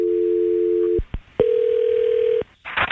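A phone line rings out on an outgoing call placed by The Jeremiah Show on 96.5 Kiss FM: two steady, hum-like ringback tones about a second each, separated by a short pause and a click, with a brief rustle of line noise at the end.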